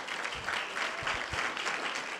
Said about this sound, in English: So thank you for being there for me, bro. Can we clap it up for Pastor Lane?